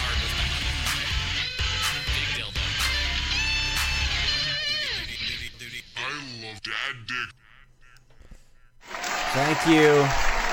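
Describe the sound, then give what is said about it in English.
A crowd applauds loudly with some cheering mixed in, a dense wash of clapping for several seconds that thins out, with voices audible before the noise swells again near the end. “You don't need to applaud anymore.”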